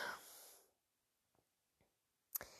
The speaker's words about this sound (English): And, oh Christ, I'm gonna yawn a lot.